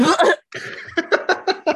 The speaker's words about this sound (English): I was in the middle of burping and you said, I was trying to burp like subtly so it didn't come over the mic because I couldn't get to the mute button.